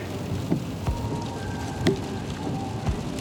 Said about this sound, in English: So much better than the desert. And so much more wet. But I like the rain.